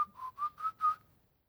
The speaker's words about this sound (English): Trying to whistle there